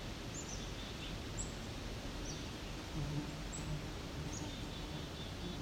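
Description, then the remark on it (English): A young cedar waxwing gives thin, high-pitched calls, about five short notes spaced roughly a second apart, faint against a steady rustling background hiss. “That one I think may be a very young cedar waxwing.”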